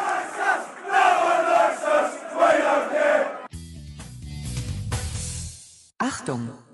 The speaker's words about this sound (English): Thank you, Lions! What a half of football. What a half of football. Lee Gregory, Steve Morrison getting applauded off the pitch there in front of us. My ears are singing.